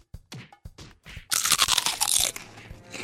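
Loud crunching of Defco's Black Lagoons crispy snack: a few sharp bites at first, then a dense burst of crackly chewing that continues steadily to the end, with no voices.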